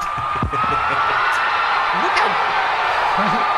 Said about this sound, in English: And you see, like, I've never heard I rarely hear crowds go that crazy or something. And it's just like, that's something that everybody in a wrestling crowd can relate to.